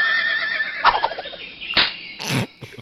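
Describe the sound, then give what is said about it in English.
A person imitates the slap sound of a Tikbalang, a cryptid of the Philippines, with a high, wavering, horse-like whinny broken by three sharp, noisy bursts. It is fairly loud and has no talking over it. “Tikbalang slap-a-rang sound.”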